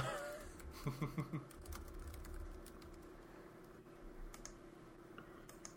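Quiet, irregular clicking of keys on a computer keyboard as someone searches for information, tapping in short bursts and scattered single strokes over a low background hum, with a brief low warbling sound near the start.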